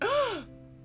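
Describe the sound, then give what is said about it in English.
A single short, voiced gasp, its pitch swooping up and then down in about half a second before fading to quiet. It sounds like a person acting out a dramatic gasp. “Gasp. Everything about them is fake.”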